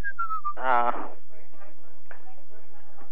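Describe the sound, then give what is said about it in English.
A short, thin whistle slides downward for about half a second as someone attempts to whistle the Philippine national anthem, then breaks off into a loud vocal burst, followed by quieter murmured talk. “Why don't you whistle? Then whistle it.”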